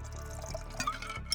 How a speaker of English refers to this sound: Now shake with ice, pour, and enjoy.